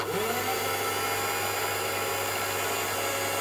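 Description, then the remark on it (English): A drill motor whirs steadily and loudly as the drill is lowered toward the top of a strain gauge on a sample, a constant mechanical hum with a faint pitch shift at the start and no talking over it. “What we're doing now is we're lowering the drill in order to find the surface, and what we'll see is that when the drill touches the top of the strain gauge, there'll be some swarf as the top layer of the strain gauge is removed.”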